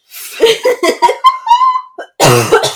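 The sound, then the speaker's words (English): A run of short coughs in quick succession, broken by a brief squeaky vocal sound, then one last loud, rough burst. No words are spoken. “No, she was doing her little cough thing.”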